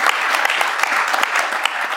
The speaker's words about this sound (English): Give Zeph a big round of applause.